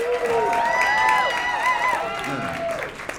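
A comedy club audience applauds steadily, with rising and falling whoops and cheers from the crowd layered over the dense clapping for about three seconds.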